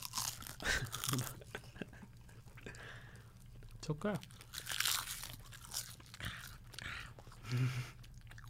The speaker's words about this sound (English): I don't think I'm going to like this. Crunchy seaweed snack.